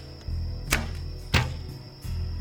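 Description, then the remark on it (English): Three arrows being shot by Jonathan in a field, in quick succession, each a sharp, brief snap about half a second apart, over a low, steady background hum with no one speaking. “As David listened, Jonathan shot 3 arrows.”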